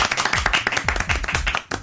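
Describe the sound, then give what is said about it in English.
A small group of students from St. Stephen's Church College, joined by their teacher, applauds, with many overlapping hand claps forming a steady, fairly loud patter for about two seconds before it briefly dips and resumes. “Okay, oh, we even got the teacher clapping during that one.”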